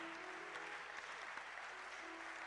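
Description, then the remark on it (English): A church audience claps for Jesus in appreciation of the preaching at a morning session, a steady, dense wash of many hands beating together without a clear rhythm, with a faint sustained tone humming underneath. “Oh, I thought you would give Jesus a clap and appreciate the preaching.”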